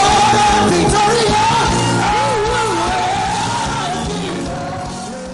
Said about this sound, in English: Shout! His name is Jesus. You are shouting too much.